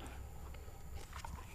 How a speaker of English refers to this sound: Let's have a little sip of that then. Okay. See if that's nice. Here we go.